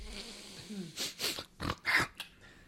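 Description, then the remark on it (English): A loud nasal snort and sniffle, repeated in about four wet, noisy bursts over a couple of seconds, with a quiet stretch before them. “I'll try not to sniffle too much.”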